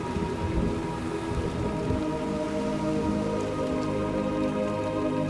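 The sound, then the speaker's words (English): A steady rainstorm fills the scene with a dense, rushing wash at an even loudness throughout, while low humming, sustained tones drone beneath the downpour. No one speaks. “It's the giant shells singing in the breeze, creating an air of calm in the storm.”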